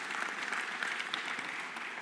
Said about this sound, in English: give a little round of applause to our mums, shall we?